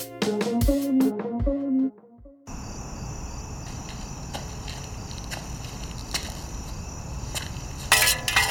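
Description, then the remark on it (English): A short musical passage gives way to a low, steady hiss, with scattered metallic clinks sounding at irregular intervals and a louder clanking burst near the end. No one speaks. “Rats clink, but they don't clank.”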